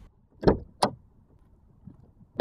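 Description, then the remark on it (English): Two solid thuds of car doors shutting in quick succession, followed by quiet shuffling and a faint rustle as someone settles into the vehicle. “All right, let's get back in the car.”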